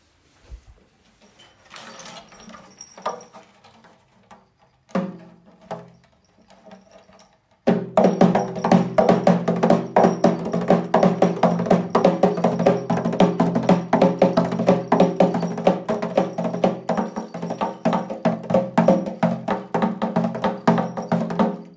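A chogoro, a two-skinned triangular frame drum like a daf from Bidkhun village, Marghak, Bam, used in the fire dance, is struck on its back and front skins. It starts with a few light, scattered taps, then breaks into a loud, rapid, unbroken stream of even strokes with a deep resonant boom.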